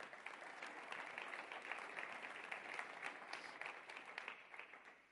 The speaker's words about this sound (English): So can you clap for yourselves? Way to go.